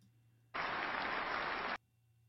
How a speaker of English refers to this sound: And he gets a resounding applause, actually.